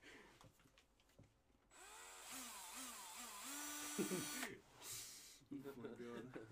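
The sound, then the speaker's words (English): A power drill whirs loudly right by the microphone for about three seconds, its motor pitch rising and falling as it revs, with people talking before and after. “Stop moving the drill, for God's sake.”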